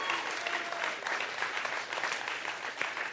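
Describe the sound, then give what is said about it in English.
Steady applause from an audience fills the whole stretch, a dense wash of many hands clapping at once, fairly loud and even with no voices standing out. “Can we clap for”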